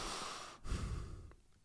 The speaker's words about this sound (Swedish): Andas genom näsan. Min näsa, som är allergisk, chock.